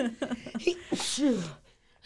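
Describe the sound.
A single loud sneeze: a sharp breathy burst that trails into a falling voiced tail, after a brief moment of voice and quick breathy sounds.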